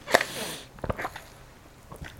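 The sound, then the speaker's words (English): A short sip of water: a sharp slurp with a brief airy hiss, then a few soft wet clicks like a swallow, with no talking. “I need to drink a sip of water.”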